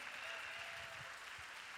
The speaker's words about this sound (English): Come on, clap your hands.